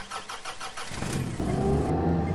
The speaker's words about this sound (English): I've had 9 cups of coffee, and I'm currently getting in my car. Can you hear it?